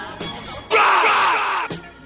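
A loud, raw male scream bursts in for about a second, cutting sharply into a quieter musical backing that resumes right after, like a sampled shout spliced into a song.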